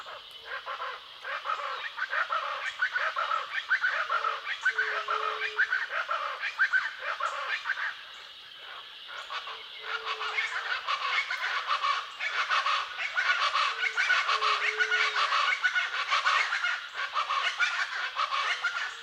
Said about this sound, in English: And here are several pairs of chachalacas sounding off from different directions. What a cacophony of cackling sounds.